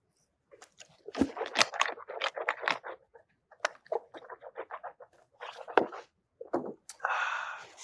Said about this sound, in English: We just take one more sip of water here. Sorry. Wet the whistle a little bit.